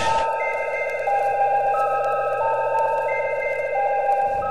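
A sustained electronic chime of layered, ringing bell-like tones, with pitches shifting slightly over several seconds, steady and fairly loud, with no voices; the chime signals the start of a story on Neverland story time.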